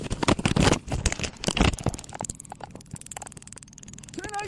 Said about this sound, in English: As you can hear, that taser's been fired. You can hear it crackling. So we got a discharge on a taser.